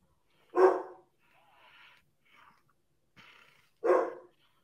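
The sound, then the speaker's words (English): Two loud dog barks in a horror film, about three seconds apart, with faint murmuring, rustling sounds in the quiet stretch between them. “He kills a dog too.”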